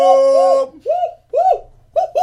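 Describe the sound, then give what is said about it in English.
A person makes monkey noises, a series of about six loud, voiced hoots that swoop up and down in pitch, the first two run together, then short separate calls with brief gaps. “That's his monkey noises.”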